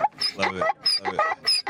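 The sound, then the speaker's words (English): A donkey brays in a quick series of harsh, honking hee-haw cries, loud, the rasping tones rising and falling in a repeating rhythm with no talking. “We do have a donkey sound too.”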